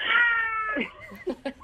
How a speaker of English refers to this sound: Jeez, someone was shouting in the background.